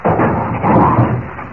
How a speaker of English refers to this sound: He's behind this heavy wooden door, locked in. Get away from the door, Jimmy. It's coming down.